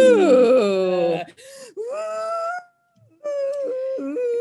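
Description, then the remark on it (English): A voice imitates howling wind with long, wavering moans that rise and fall in pitch, broken into three sustained swells separated by brief pauses. “So he starts looking through other parts of the house and then he goes outside and is windy. So much wind.”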